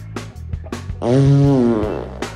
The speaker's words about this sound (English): Why did that sound horny? Wait. Yeah. That's a three-pronged approach, dude. That in the middle, it literally sounded like the fart was going.